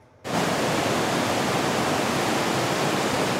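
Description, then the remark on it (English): After a brief quiet start, a loud, steady roar of the fast-moving Capilano River on the North Shore, under the Highway 1 overpass, fills the scene during a swift water rescue: a dense continuous wash of churning current with no voices. “A group of fishers became stranded on a sandbar on the fast-moving river.”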